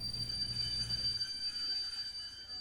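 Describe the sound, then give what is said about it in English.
A train's low rumble dies away partway through as it brakes to a stop, while a thin, steady metallic squeal hangs over it. Fairly quiet, with no voices. “The train stopped moving?”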